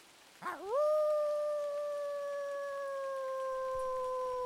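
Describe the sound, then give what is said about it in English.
A single long, loud animal howl rises sharply at the start, then holds a steady, mournful pitch that slowly sags for several seconds without a break. No voices are heard. “howls, sending shivers down their spines.”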